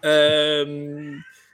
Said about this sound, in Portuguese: e desculpa, estão aqui a miar, mas é o meu gatinho que quer ir à rua.